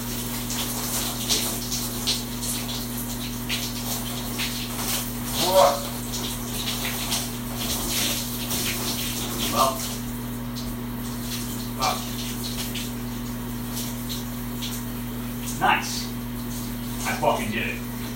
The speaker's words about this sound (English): Me washing my face, so look.